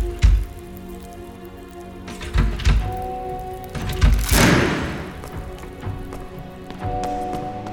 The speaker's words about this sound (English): Prisoner! Halt! What was that explosion? What happened in the courtroom?